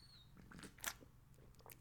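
Someone takes a quick sip of a drink: soft wet mouth clicks and a faint slurp over about two seconds, quiet and with no talking.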